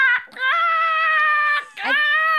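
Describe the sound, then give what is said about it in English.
A person's voice imitates a raccoon's scream: two long, shrill, steady wails, the first held over a second, broken by a short gasp before the second rises again, loud and harsh. “raccoons make a very terrifying noise.”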